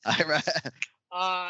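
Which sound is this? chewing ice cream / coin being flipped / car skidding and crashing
coin being flipped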